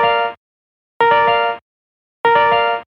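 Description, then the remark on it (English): An electronic bell calling members to a committee vote rings in three loud, evenly spaced bursts, each a harsh buzzing tone lasting about half a second, separated by brief silences. “And the sound for a committee vote is this.”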